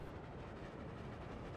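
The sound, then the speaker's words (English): A steady rumble of a moving train, with the rolling clatter of wheels on the rails filling the whole short stretch and no voices. “Elmo likes hearing the train wheels click clacking on the tracks.”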